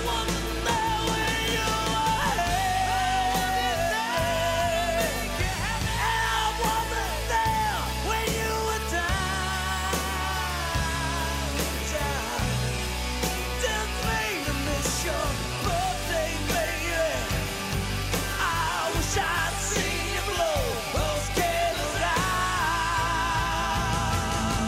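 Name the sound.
rock song playing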